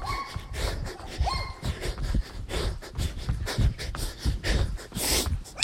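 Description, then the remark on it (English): A dog barks in a string of short, rough bursts, with snorting breaths between them against a steady outdoor background. “Here comes a dog. Wants to yell at me.”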